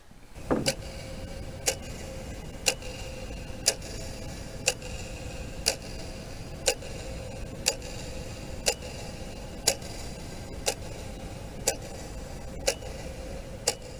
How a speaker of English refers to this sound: All the clocks keep ticking, time is moving so swiftly.